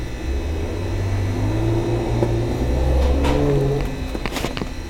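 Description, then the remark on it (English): A car engine revs outside with a low, droning pitch that rises and falls before it speeds off, fairly loud over a steady background rumble, with no voices. “Yeah, that might have been someone else skirting.”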